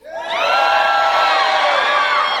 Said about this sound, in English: That's beautiful. That was the loudest some of you guys have ever screamed in church in your life.